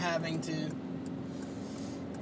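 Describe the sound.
An old car's engine runs with a steady, low droning hum from inside the vehicle, and a brief voice sounds at the very start before the engine noise carries on alone.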